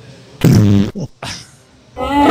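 A loud fart sound effect played from a soundboard in three bursts: a long buzzy blast, a short sputtering one, then another rumbling blast with a brief squeaky tail, played cleanly with no talking.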